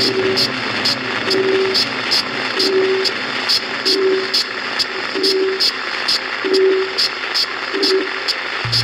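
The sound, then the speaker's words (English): A duck call sounding a hail call: about seven drawn-out, nasal quacking notes at an even pace, fairly loud, over a steady background hiss with faint rhythmic ticking. “The hail, or sometimes called a highball call, is a long, loud call used to attract ducks at 300 yards and over.”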